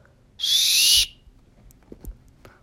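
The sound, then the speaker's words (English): A referee's whistle gives one loud, shrill blast lasting about half a second for the kickoff of a game, then cuts off, leaving faint background noise and a few soft thuds. “Referee blows whistle for the kickoff.”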